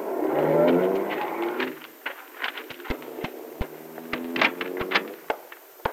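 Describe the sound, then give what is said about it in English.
A car engine rumbles and then cuts off as a car drives up to drop off a passenger at a house, followed by a scattering of sharp clicks and knocks like a door and footsteps, with no one speaking. “I thought I heard a car drive up.”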